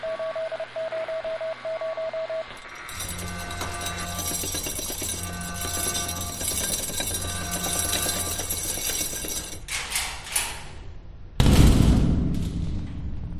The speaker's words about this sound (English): I've got a feeling we've got a large cannon here.